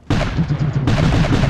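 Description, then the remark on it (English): A loud cannon blast erupts from a ship, then a second follows under a second later, each trailing into a dense, rumbling roar with no voices. “They shoot again.”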